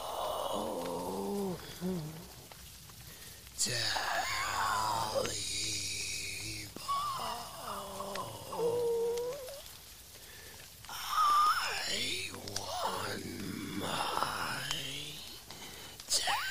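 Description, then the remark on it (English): A guttural, inhuman, anguished creature voice moans and growls in several long, strained bursts, rising and falling in pitch with raspy breaths between, loud and without any other talk; it sounds like a person imitating a monster, the beast of the Tailypo tale trying to get in through a bedroom wall. “He heard the anguished voice over again, as guttural and as inhuman as before.”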